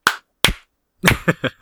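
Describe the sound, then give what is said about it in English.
A slow clap: two sharp, widely spaced hand claps, then a quicker burst of four claps that speeds up at the end. No voices. “Is that a slow clap or are you masturbating?”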